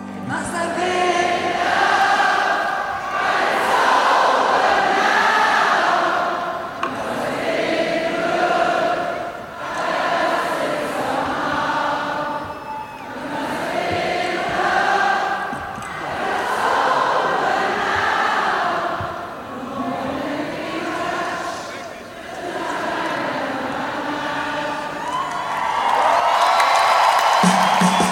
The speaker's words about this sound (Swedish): Det som då händer i Berlin är att publiken sjunger om åt henne. En som var där har senare skrivit att för alla gånger hon har sjungit för oss fick vi att sjunga för henne. Och så här lät det.